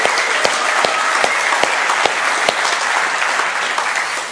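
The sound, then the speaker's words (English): A crowd claps steadily and loudly in sustained applause for the speaker's wife, a dense wash of hand claps with a few sharper accents, running for several seconds with no voices. “And boy, does she deserve applause.”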